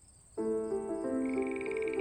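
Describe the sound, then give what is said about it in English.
A frog call at a campsite at night, the frog landing on a sleeping bag, rises abruptly out of near silence into a loud, steady, buzzy tone that holds for well over a second, stepping slightly in pitch as it goes; no voices. “A huge moth like a hummingbird visits, as does a frog, who plops right down on my sleeping bag.”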